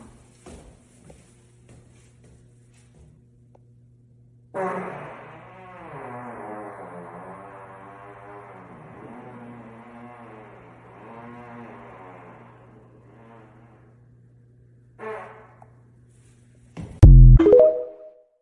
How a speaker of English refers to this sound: So I was like, ladies and gentlemen, stairwell fart day 76. Yeah, baby.